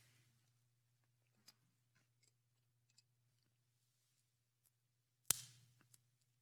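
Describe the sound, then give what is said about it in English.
A pencil snaps in two with one sharp crack, preceded by a few faint clicks and handling sounds over a low, steady background hum. “What would you call it? Broken.”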